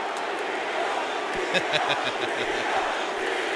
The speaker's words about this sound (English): The fact that the crowd is chanting his name.